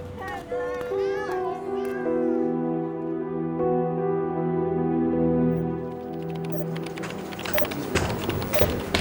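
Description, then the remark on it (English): Cats meow in a quick burst of rising and falling cries at the start, then long sustained, wavering tones carry on before a clattering, busier stretch at the end. “Get away, cats!”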